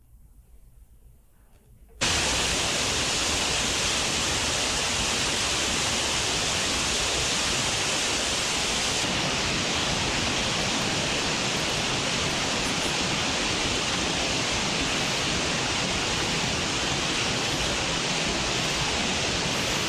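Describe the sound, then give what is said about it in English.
After a moment of near silence, a loud, rushing roar of river floodwater surges in abruptly and churns on steadily, a dense, unbroken wash of river noise with no voices. “But as best we know, this is pretty similar to what the Jordan River was like at flood stage.”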